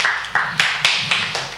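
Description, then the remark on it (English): Hands clap in a steady, even rhythm, about six or seven sharp claps in quick succession, fairly loud and with no voices over them, clapping to encourage a woman. “Okay, let's clap for her.”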